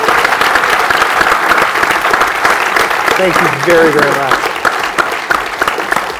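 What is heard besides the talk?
audience applause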